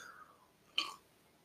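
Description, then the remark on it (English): A single quick sip from a beverage, a brief wet slurp, faint and alone against a quiet background with no talking. “Excuse me while I have a sip of my beverage.”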